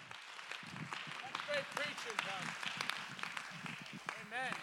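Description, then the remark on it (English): A church audience claps their hands in praise to God, a dense, continuous patter mixed with raised voices and cheering calls throughout. “Oh, let's clap our hands and give God the praise.”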